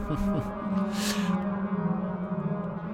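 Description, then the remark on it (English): A whale-like synthesizer patch played on a Cat synth using sample and hold, put through a modulated delay: a steady low, layered drone with wavering, swooping tones early on and a brief airy hiss in the middle, fairly loud with no talking. “It's the cat doing sample and hold, and then it's put through a modulated delay as well,”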